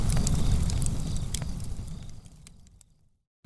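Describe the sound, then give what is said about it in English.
A campfire crackles steadily, sharp pops and snaps over a low roaring rumble, fading out after about three seconds into silence before a brief sound cuts in at the very end. “Campfire.”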